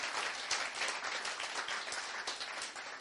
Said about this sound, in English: We have great joy to have you with us here in the church tonight. And if you are new, you stay silent, but all the regulars are going to give you an enthusiastic, warm round of applause. Let's welcome our guests.